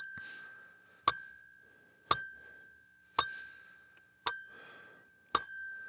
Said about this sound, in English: And real quick, before I forget, did anyone else notice how weak my bell was? I give my most sincere apologies.